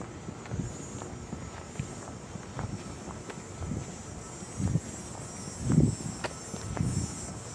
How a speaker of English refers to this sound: These cicadas have been making sound from the very beginning of the recording. They seem to be everywhere.